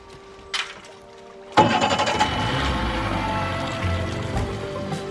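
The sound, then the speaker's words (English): A motorboat engine cranks briefly, then catches and roars to life, settling into a loud, steady rumbling idle with a faint watery wash underneath, as the boat's owner sets off to take passengers on a ride to point out other docks. “took Taylor and I for a ride on his boat so he could point out all of the other docks”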